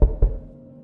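Two quick knocks on a locked office door, fairly loud, each a dull, low thud in rapid succession, followed by a brief fading resonance and quiet.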